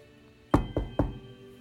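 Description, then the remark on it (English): Three solid knocks on a wooden cabin door at night, spaced evenly a quarter second apart, each with a dull, resonant thud and brief ring-out. “Rose heard someone knocking at the cabin door and she looked up.”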